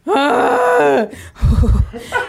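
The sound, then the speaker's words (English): A voice imitates shaky, quivering breathing: a drawn-out wavering moan-like breath, followed by a rougher, breathy exhale. No words are spoken. “Oh, I hate the quiver breathing. The little quiver”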